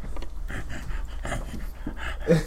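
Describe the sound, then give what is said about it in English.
A person growls and pants in several short, rough, breathy bursts, imitating an animal, with a slightly louder growl near the end. “I don't know why I was growling.”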